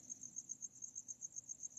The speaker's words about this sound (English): Anyway, I hope you're enjoying the crickets. Part of the ASMR experience.